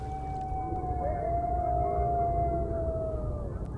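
Coyotes call out in the evening, howling in long, sustained wavering tones that slowly slide downward, a couple of voices overlapping, carried over a steady low rumble of outdoor background noise.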